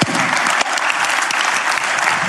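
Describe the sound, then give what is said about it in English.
A crowd applauds steadily, a dense wash of many hands clapping at an even, loud level throughout, with a few sharper individual claps standing out. “Yeah, you can clap again.”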